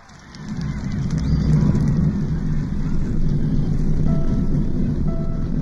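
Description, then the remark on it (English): A deep, thunderous Saturn V rocket engine roar at the Apollo 11 launch rumbles continuously at full strength after a quick swell, dense and crackling, with no voices over it. “We have a go for main engine start. 50 years ago today, the world watched the launch of Apollo 11, the mission that would put the first man on the moon.”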